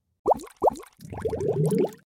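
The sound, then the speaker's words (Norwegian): A bubbling jingle played to open a segment: two hollow, rising plops, a short pause, then a quick cascade of bubbly upward blips over a low burbling bed, lasting about a second before stopping. “Boblelyden har vært der.”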